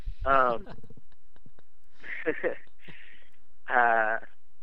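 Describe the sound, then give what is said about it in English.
A cat meows twice, clear, one drawn-out cry at the start and another near the end, with soft rustling, breathy noises in between. “Little cat.”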